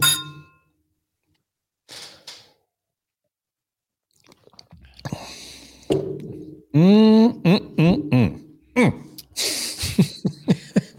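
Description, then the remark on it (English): A single bright clink of beer glasses, one holding a 9% rich, robust ale, touching in a toast rings out and fades quickly, followed by a pause, then soft drinking and handling noises and people talking. “All right. Cheers. Beautiful. Cheers.”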